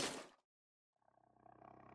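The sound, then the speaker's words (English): A harsh burst of noise cuts off into silence, then a deep, raspy creature growl rises in, rumbling with a rapid pulsing texture and growing louder. “I could still hear the growling of whatever I heard in the background of his car.”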